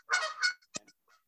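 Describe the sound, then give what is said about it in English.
Wild Canada geese honking outdoors, a couple of loud, nasal calls followed by a sharp shorter honk and a faint trailing call, with no talking. “Those are birds outside? Those are geese.”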